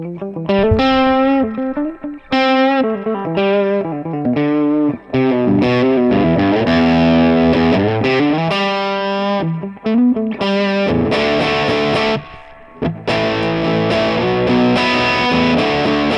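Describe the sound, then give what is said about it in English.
Crunchy, overdriven guitar played through a distorted Boogie amp pushed up in volume, with thick harmonic chords and riffs ringing out loudly and continuously, a few brief pauses between phrases, no one talking. “Should we see how crunchy that goes? Let's crunch it up.”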